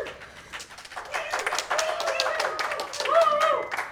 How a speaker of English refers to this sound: Thank y'all. I appreciate that applause right at the start.